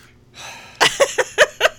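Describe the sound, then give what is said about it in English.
A voice performs a dramatic gasp, a breathy rush of air followed by five quick, sharp, voiced intakes in a rapid stuttering rhythm, fairly loud. “Everybody, 38 out there just gasped.”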